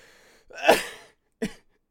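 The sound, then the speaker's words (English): A harsh cough bursts out after hard laughter, followed by two shorter, sharp coughs spaced about half a second apart, with no talking around them. “You know, excuse me, when I laugh hard, it causes me to cough more.”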